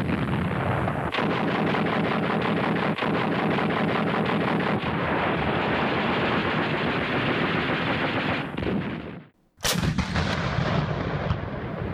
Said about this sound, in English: As she was going on her way to deliver these bombs, German anti-aircraft batteries were laying in heavy fire to the bomber squadron. This might have been something from a German Flakverling 38 anti-aircraft gun or a German 88.